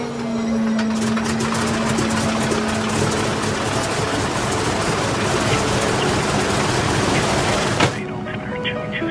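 A loud, steady roar of the engine of a Harvard propeller trainer plane, flown by a former Canadian Air Force pilot taking a passenger up, with a rapid, rattling pulse and a low hum underneath, holding constant for about eight seconds before cutting off abruptly.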